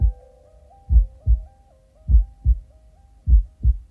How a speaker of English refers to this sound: Also, you can start to feel just a very soft heartbeat sound.